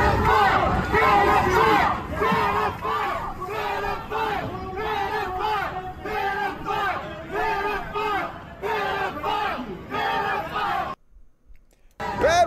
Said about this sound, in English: the crowd was out there chanting pedophile at him.